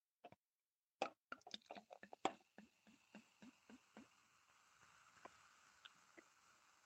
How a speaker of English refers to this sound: But though we want to get our feed, the fiery feed, to open it up by pouring that good old wine from France. La, there we go. Yeah, I've opened that without spilling any. Now we'll pour some.